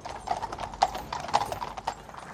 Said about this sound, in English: It was accompanied by the King and his sons, as well as other members of the royal family, walking in step behind the horse-drawn gun carriage bearing Her Majesty.